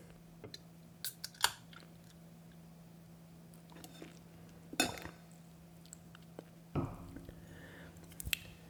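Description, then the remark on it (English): A Cigar City Florida Cracker beer is opened with a short fizzy crack amid light clinks and handling noises, followed by a soft sip, over a faint steady hum with no talking. “But I've had this before, but let's open it up and take a sip.”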